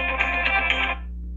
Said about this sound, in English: My phone would ring in right now.